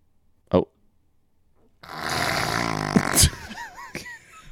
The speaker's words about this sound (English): But yeah, funny fart number 4. I swear I'm not making that up. Let's look. Funny fart number 4.